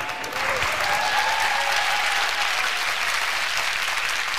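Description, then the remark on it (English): Steady applause from a fake virtual audience, a dense wash of many overlapping claps holding a constant loud level throughout, with no voices heard over it. “Dang, I need her claps.”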